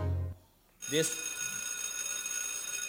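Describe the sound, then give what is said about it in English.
A doorbell rings after a short low hum and a moment of quiet, striking once with a bright, sharp onset and then a steady, shimmering tone that lingers to the end. “Hear that? That's the door. It's time to go unlock the doorbells.”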